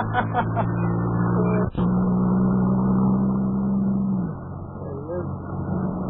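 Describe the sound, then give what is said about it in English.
A car engine idles with a steady, low hum, then its pitch drops and settles as the car slows and pulls to a stop. Indistinct voices are faintly audible. “Well, he's stopping his car.”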